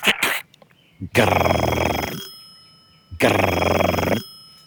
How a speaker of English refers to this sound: and it rang and rang, and it had one of those rings that doesn't sound like a normal phone ring, like... almost sounds like you're calling someone from 40 years ago, and it just kept ringing and ringing. Occasionally, there'd be a weird click.